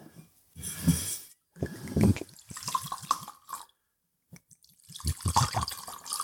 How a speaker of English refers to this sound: Let me pour that out and give you some fresh water.